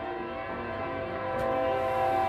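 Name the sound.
passing train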